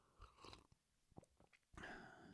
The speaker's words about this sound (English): Get a quick sip of tea there.